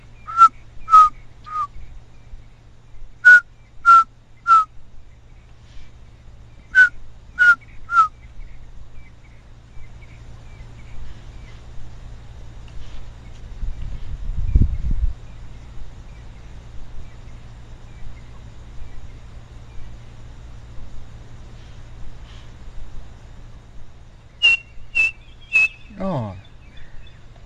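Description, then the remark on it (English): A tiny black and white bird with a chestnut band across its white breast repeats a clear whistled call of three quick, descending notes, about four times with pauses between, over a steady low hum; the last phrase is higher and ends in a downward slide. “A little black and white bird with a chestnut band across its white breast, and it's got quite a characteristic call.”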